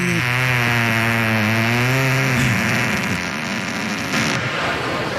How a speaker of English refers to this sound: Yeah, so, and why don't you play more farts on the show? I do.